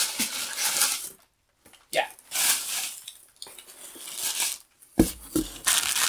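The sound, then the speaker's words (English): Crinkly rustling of packing paper and plastic air pouches being handled from a brown box, coming in several bursts separated by brief pauses, with a sharper crumpling rush near the end. “Brown box is full of packing paper and packing air pouches.”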